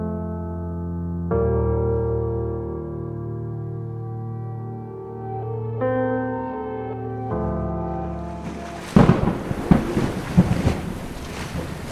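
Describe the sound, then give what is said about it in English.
A low, sustained musical drone shifts chords for several seconds before loud, crackling bursts of thunder from an approaching storm break in and rumble to the end. “The storm was moving in now, the dark clouds much closer.”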